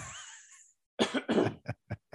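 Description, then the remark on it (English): Someone clears their throat loudly, a couple of rough, gravelly bursts followed by three shorter, fading hacks, with no talking around it. “No, let me clear my throat.”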